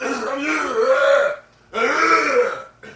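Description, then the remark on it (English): Someone clears their throat twice, each a loud, drawn-out guttural rasp lasting over a second, separated by a brief pause, with no talking. “I'm clearing my throat!”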